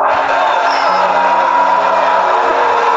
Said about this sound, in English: Is that like a booing? It's some booing going on in there. Booing in a coliseum or something.